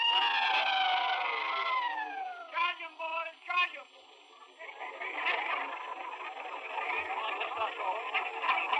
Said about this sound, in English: This is a recording of actual Civil War veterans in the 30s. So some of the few dudes who are still alive. Doing it. A sample of the rebel yell. So these are gentlemen doing it themselves.